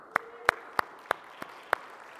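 Six slow, evenly spaced hand claps, sharp and fairly quiet, with a brief pause between each. It sounds like a single person clapping rather than a full audience applauding. No talking.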